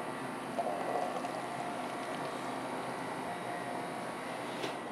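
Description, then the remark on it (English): Kona Dark Roast coffee pours into a cup in a steady, unbroken stream, a continuous splashing hiss that holds at an even level for several seconds with no voices. “And you pour Kona Dark Roast as well.”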